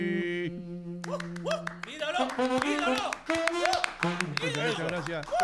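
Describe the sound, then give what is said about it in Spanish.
A held sung note gives way to an audience of Peruvians breaking into dense, steady applause, with excited cheers and whoops rising over the clapping until the end. “Cantó, gracias a todos los peruanos que me están aplaudiendo.”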